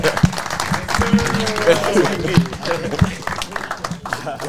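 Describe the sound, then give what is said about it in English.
A crowd applauds steadily for a few seconds, a dense, bright patter of many hands with scattered shouts and voices mixed into the clapping. “All right, hey, all give a round of applause to our people, man.”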